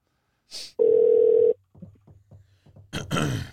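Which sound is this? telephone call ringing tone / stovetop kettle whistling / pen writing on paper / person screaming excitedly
telephone call ringing tone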